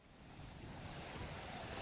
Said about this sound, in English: These are the sounds of the harbor in Havana. There is a heavy security presence.